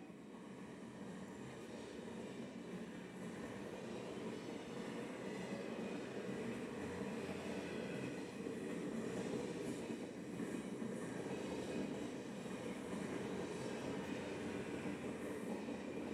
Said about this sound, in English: It's a big train.